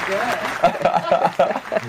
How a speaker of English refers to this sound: Oh, that's an extended applause. Thank you. Extended. Wow.